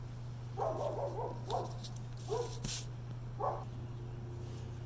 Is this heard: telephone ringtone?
no